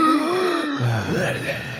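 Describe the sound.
A voice imitates a person's heavy, labored breathing in sleep, in place of snoring, with drawn-out groaning, moaning breaths, fairly loud, shifting pitch over under two seconds.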